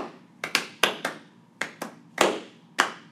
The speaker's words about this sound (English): So, Kiana, she actually is taking the GRE tomorrow morning in a faraway city. Soft, slow clap for Kiana.